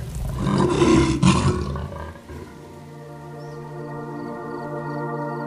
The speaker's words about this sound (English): Can you growl like a giant tiger? Roar!